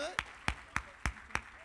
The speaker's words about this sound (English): Clap your hands real good. Clap your hands.